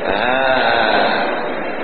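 A goat gives a single long, loud bleat with a wavering, nasal tone that fills the whole moment, unbroken, with no talking over it.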